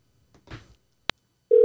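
A faint rustle and a sharp click give way to a steady, loud electronic phone tone starting near the end, the sound of a phone call to a man connecting and beginning to ring.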